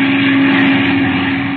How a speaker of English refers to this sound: Boy, look at that plane. That's the same plane I was flying. Look at her tear. Look at it.